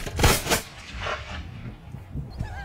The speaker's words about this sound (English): So, mazel tov. You've shot guns. That was fun.